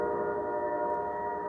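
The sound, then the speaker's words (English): A train horn sounds in one long, steady blast as a train comes in, its rich layered chord holding level throughout with no break and no voices. “Then you got these trains coming in.”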